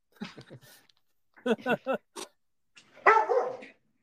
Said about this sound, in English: Oh no. It's my dog yelling. Yeah, dog wants to let you know that the Packers are going to win 10 games.